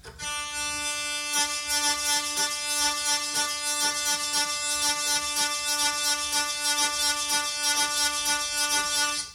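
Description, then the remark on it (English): A loud, steady buzzing drone with rich harmonics, broken into quick rhythmic pulses as a buzzing bridge is struck percussively, a rattling beat over the sustained tone, with no one talking. “Like I'll try to just something simple with the buzzing bridge.”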